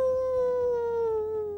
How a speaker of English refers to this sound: Well, then all of a sudden, those jackal sounds got very, very close.